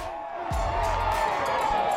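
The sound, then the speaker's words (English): A large crowd roars and cheers in a steady, dense wash of voices, loud and sustained, with a brief low thump early on, at the Georgia Bulldogs' national championship parade on the University of Georgia campus on a Saturday afternoon, as Coach Kirby Smart hypes the crowd up. “He is hyping the crowd up.”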